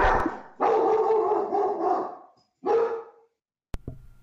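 A dog barks loudly in a few bursts, one drawn out and howl-like, followed by a short sharper bark, then a sudden click at the end.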